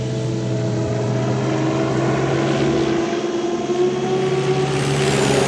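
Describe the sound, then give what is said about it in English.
A steady, loud aircraft engine roar drones on throughout, continuous, with a humming tonal whine layered over broad rushing noise and no voices. “In Edward's world, a paper plane could be a turbojet fighting the forces of darkness.”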